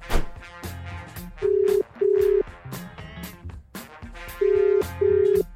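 A phone line rings out in two double-pulse bursts of steady tone, loud and clear over an upbeat music bed with punchy drum hits, as a call to Tim Walsh, the Australian men's sevens rugby coach, waits to connect.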